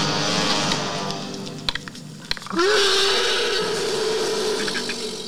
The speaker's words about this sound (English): I love that growl. It's almost alligator-like, but like something otherworldly too.